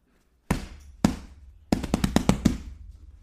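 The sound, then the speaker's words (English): A person's hand beats loudly on their chair: two separate thumps, then a quick flurry of about six more slaps in a row, with no voices. “That was me beating my chair, not my dog, I swear.”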